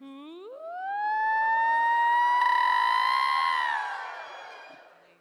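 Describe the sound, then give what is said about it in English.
A crowd of voices, following a few women, starts as low as they can and slides steeply upward in pitch, swelling into a loud, sustained collective scream that holds for a few seconds before tapering off, as a welcome for a speaker. “You're going to go really high until you scream.”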